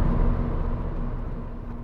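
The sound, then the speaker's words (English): A car engine hums as a steady, low rumble with a faint tonal whine on top, easing off slightly as the car slows at the end of a commute. No one speaks. “And, yeah, coming to the end of my commute. Once this car slow down.”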